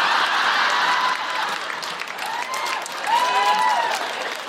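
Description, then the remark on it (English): Steady, dense applause from a crowd voting by cheer between a week in Belfast and one at the Edinburgh Festival fills the whole stretch, with high whooping cheers rising above the clapping in the second half. “And now are you cheering?”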